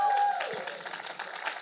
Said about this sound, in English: Why don't you give the amazing Pastor Dave a huge round of applause?